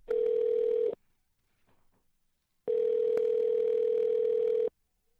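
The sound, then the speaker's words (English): A telephone dial tone: a steady, fairly loud electronic hum that sounds for about a second, stops, then returns for two seconds after a short silence. No one speaks. “Since I couldn't pound the pavement, I made a lot of phone calls.”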